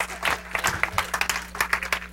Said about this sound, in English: Oh, come on, give yourself a hand clap of praise.